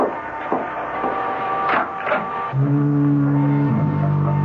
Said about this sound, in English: Oh, the weather's changing. I can scarcely see the beam of the lighthouse. It's getting all misty. And don't be frightened if you hear the foghorn.